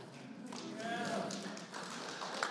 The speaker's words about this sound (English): Yes, you guys are in. The clapping means you're in.